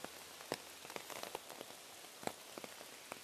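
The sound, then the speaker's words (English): Steady rain pattering on a hard surface, with a constant hiss broken by scattered sharper drops landing at irregular moments. No voices are heard. “A little hard to tell with all this rain.”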